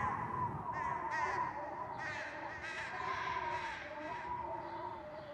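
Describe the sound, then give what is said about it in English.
A flock of crows caws continuously directly overhead, harsh overlapping calls layered into a dense, noisy chorus that stays loud for several seconds. “A murder of crows directly above.”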